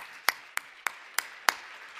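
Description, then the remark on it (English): Five sharp hand claps in a steady, evenly spaced rhythm, about three per second, each crisp and bright, with no voices around them. “Clap.”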